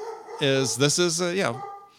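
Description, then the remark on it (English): A dog in San Diego lets out a drawn-out, wavering bark lasting about a second, fairly loud, with nobody talking over it. “Sorry, dog barking in the background.”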